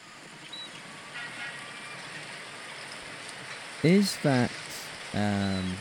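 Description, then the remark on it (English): Steady wash of sea waves at a harbour, then several loud, harsh seagull cries: two quick calls in succession, followed by a longer, drawn-out squawk over the constant surf. “Is that the sea going in and out, and then there's a train going past? Harbour seagulls.”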